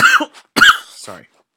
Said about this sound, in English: I'm going to cough.